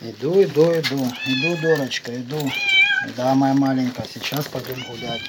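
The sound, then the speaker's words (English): A cat that lives alone in the village of Molotonarivka meows repeatedly, about half a dozen drawn-out, wavering calls in quick succession with only brief pauses between them, loud and plaintive throughout. “But I was upset that there's this cat living in Molotonaravka who he apparently cares about, but who is living with no human being and doesn't see a human for 3 days at a time.”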